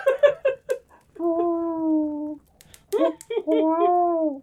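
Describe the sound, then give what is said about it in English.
A person imitates an owl: a few quick, choppy vocal bursts, then two long, steady hoots that sag slightly in pitch, each lasting over a second, with a short pause between. “Oh, I don't know, I'm an owl.”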